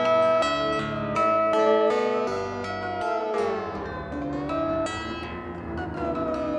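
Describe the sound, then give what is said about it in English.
A modular synth, a Mutable Instruments Rings module triggered by a Korg SQ1 sequencer and run into a Beads module, plays a run of plucked, bell-like notes with rich harmonics, then the pitch bends and glides before settling into sustained, shimmering tones. It is steady in loudness, with no voices. “You can hear the pitch bending.”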